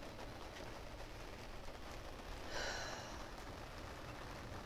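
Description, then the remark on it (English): Steady rain hisses softly and evenly throughout, a dense wash of falling drops with a brief slightly louder gust partway through. No voices are heard. “This rain is washing away all that does not serve me and my highest good.”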